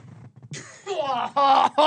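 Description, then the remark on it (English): A single harsh cough bursts out, followed by a strained, voiced throat sound that trails into a couple of short groaning bursts; no words are spoken. “As you can see, if you're watching on YouTube, sorry for the cough.”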